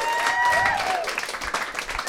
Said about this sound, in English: Big round of applause for Albert Einstein, Einstein, ladies and gentlemen. Let's give it up for all your comedians tonight. Very big funny. Round of applause.